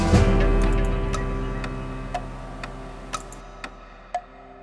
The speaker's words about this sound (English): The clock will keep ticking away the seconds until your time on this earth is over. Tick tock, tick tock, tick tock.